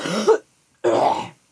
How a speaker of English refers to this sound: Excuse me, let me just cough. You could cut this out if you want.